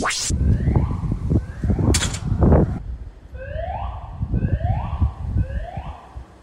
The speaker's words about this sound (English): A bloody loud alarm. Four streets away, and that's how loud it is. Yeah, well, it sounded like it was coming from that way, and I was trying to figure out.